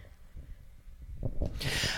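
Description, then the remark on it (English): A single sneeze: a couple of short, sharp intakes of breath build up before a loud, hissy, explosive burst at the end. No one talks. “Bless you.”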